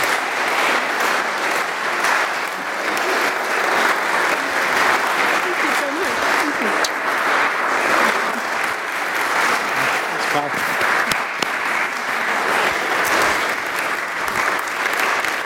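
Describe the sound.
Sustained, loud audience applause fills the room for the full stretch, a dense, steady wash of many hands clapping with occasional cheers and voices mixed in.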